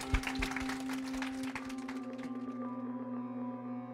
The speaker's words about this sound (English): Thank you very much for coming out. Can I get a round of applause for my guests, please?